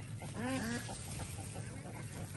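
A few short, nasal chicken calls sound in a quick burst near the start as the chickens charge toward a person among garden green beans, then fade into steady outdoor background noise for the rest of the moment.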